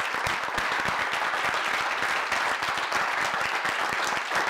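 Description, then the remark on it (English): An audience applauds steadily for a man asked to stand, dense overlapping hand claps forming a loud, continuous wash of sound that holds for several seconds without any speech. “would you please stand and clap it up for him?”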